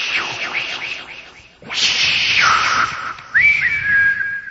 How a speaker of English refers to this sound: And 85 kids say, "Hey, your old lady's whistling."